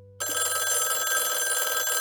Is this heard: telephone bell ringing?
yes